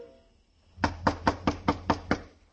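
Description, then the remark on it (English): A rapid series of seven firm knocks on a door by the police, evenly spaced, following a brief moment of near silence with no voices. “Right now it was a street where Paul's murderer might be waiting in a dark room behind a locked door, waiting for a knock that had to come.”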